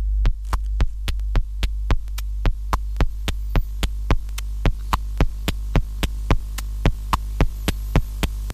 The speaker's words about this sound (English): That's the heartbeat.